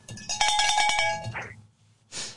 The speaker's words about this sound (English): Ralph's, you get a cowbell, hon.